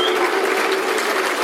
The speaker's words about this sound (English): And as ever, the customary round of applause for a red card at the bend.